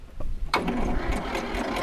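The three-cylinder engine of a tractor that came to the farm in 1959 catches after a brief quiet moment, then chugs steadily at a loud idle with a rhythmic mechanical pulse.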